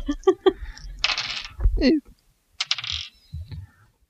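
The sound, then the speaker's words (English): Large thirty-sided dice (D30s) clatter and tumble across a hard tabletop in two short bursts, fairly loud, with brief voice sounds in between, rolled during a tabletop role-playing game. “I don't even have dice these big out. No. D30s? Yes, D30s.”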